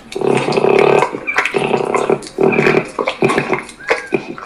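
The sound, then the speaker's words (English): Peccaries giving harsh, grunting calls in rough bursts, a series of raspy, pig-like snorts and growls with short pauses between them, fairly loud and with no voices over them. “Peccaries look like small, wild pigs.”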